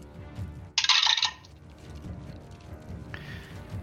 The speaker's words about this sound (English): So go ahead and roll your damage for the lightning. Okay, so that is 4d6 lightning. Let me grab those.